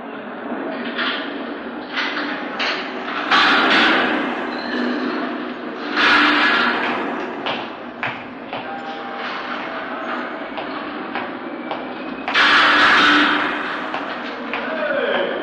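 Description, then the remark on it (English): A heavy jail cell door rolls open with a long metallic rumble and grinding, punctuated by several loud clanks and surges as it slides along its track. “Better move out of the way there. He wants to lock that door”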